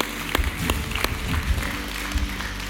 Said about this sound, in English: Come on, can we clap our hands to the Lord today? Thank you, Jesus.